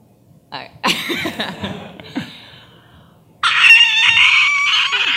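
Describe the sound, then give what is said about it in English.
A person imitates a creature's screech, the voice of Omnigol: a strained, wavering cry lasting about two seconds, a short pause, then a louder, sustained high-pitched shriek, rather like a rooster's crow. “And well, I am going to make just at least a little screech.”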